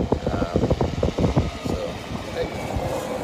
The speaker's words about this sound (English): I got a tractor coming by me.